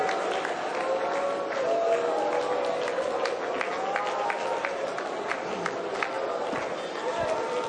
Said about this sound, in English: How about giving the Lord another hand clap tonight and shouting unto God with a voice of triumph? Hallelujah. Thank you, Jesus.